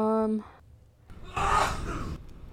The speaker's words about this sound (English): That was a man. Y'all know the kitchen sneeze. Is. And y'all know the kitchen is far from my room.